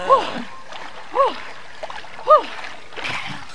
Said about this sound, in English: shrieks in the water are the most English response anyone has ever had to anything, ever.